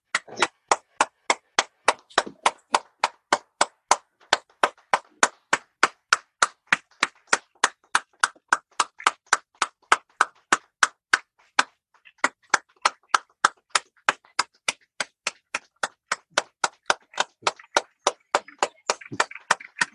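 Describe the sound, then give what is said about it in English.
Hands clap in a steady, even rhythm, about two or three claps per second, cheering on front-line workers, continuing without a break for the whole stretch. The claps are crisp, with no talking. “So we're going to say goodbye for now, but we're going to stay clapping and being together.”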